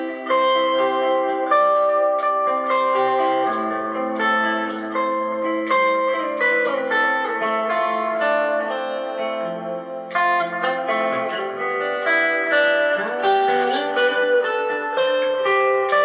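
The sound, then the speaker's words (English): A guitar with a little delay plays a chiming, ringing part in its lower register, notes sustaining and overlapping with a shimmering, effected tone at steady loudness throughout, with no one talking. “Maybe not that much gain, but or maybe so that's kind of the low chime.”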